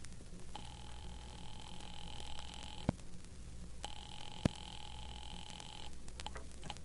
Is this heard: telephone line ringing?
yes